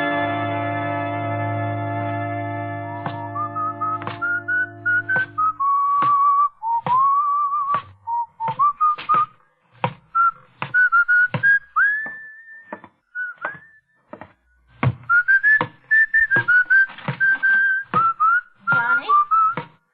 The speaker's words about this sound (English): Hiya, Mom. You still remember my whistle, huh?